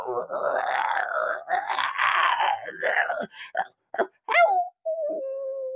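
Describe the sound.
A voice imitates a werewolf: several seconds of rough, guttural growling and groaning, a few short grunts, then a quick rising yelp that settles into a thin, steady, fairly quiet howl.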